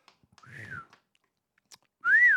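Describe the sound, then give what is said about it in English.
A person whistles two short notes, each rising and falling in pitch, the second louder and clearer, with faint clicks in the quiet gap between them. “Wow, I had to get that whistle out. That whistle was blocked there.”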